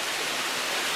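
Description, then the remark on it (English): Steady rushing water from a flowing forest stream, a dense, even hiss of running water with no pauses or voices, constant throughout. “It's Autumn Cascades Forest Stream. It's a 10-hour stream in 4K. Of just these nice flowing stream”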